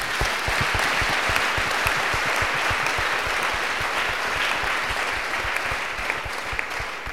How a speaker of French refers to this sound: Applaudissons pour lui.